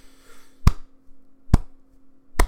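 A golf clap: three slow, deliberate hand claps, evenly spaced almost a second apart, each a sharp crisp smack over a low steady hum, with no voices.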